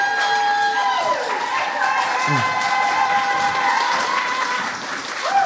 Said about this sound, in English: From low to high, we have an 8.5, an 8.8, a 9.1, a 9.5, and a 9.7. Applaud the poet.